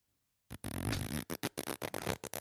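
A long, loud fart that opens with a sustained low blast, then breaks into a rapid series of sputtering bursts before trailing off.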